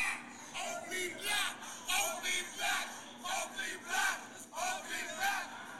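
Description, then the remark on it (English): A large concert crowd in Mexico screams a chant in unison at the end of a show, loud rhythmic bursts repeating steadily about every half second, with a dense wash of many voices filling the space between shouts. “The whole hood in Mexico. It was screaming”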